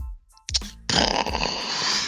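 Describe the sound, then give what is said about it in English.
A person imitates Godzilla breathing fire with their voice: a short throaty grunt, then a loud, sustained raspy hiss and roar that carries on unbroken. “This is my impression to give a fucking Godzilla breathing fire shit.”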